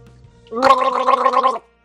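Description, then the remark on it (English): Someone voices a performed Foley coughing fit, as if having breathed in something thick and awful: about a second of loud, raspy, gurgling hacking with a rapid fluttering pulse, with no talking. “You open your mouth, both of you, and you feel like you've breathed in something thick and awful, and you start to cough.”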